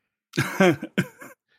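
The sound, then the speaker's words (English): A person coughs after laughing, three or four quick, raspy bursts in a short fit that ends in a rough throat-clearing sound, with no talking. “I can't make you laugh because then you just start coughing.”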